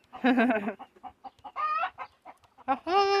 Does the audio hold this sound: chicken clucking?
yes